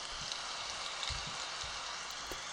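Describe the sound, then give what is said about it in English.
Steady heavy storm rain pours down by the ocean in a dense, continuous hiss, with occasional low thuds of drops striking a surface. No voices are heard. “It's raining up a storm, and the fish are swimming.”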